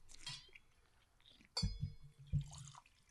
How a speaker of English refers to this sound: This is … favorite part of the show, when we're drinking wine and pouring wine and not talking.